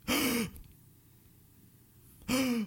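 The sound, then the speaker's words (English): A person imitates labored breathing with two loud, strained, partly voiced gasps, separated by about two seconds of near silence. “He's breathing like this.”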